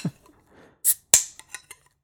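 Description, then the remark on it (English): A short airy hiss, then a sharp crack and fizzing tail as a can of craft-brewed beer is opened, followed by a few small taps and trickling sounds of the beer being poured. No one speaks. “Crack it and pour it. Let's crack and pour.”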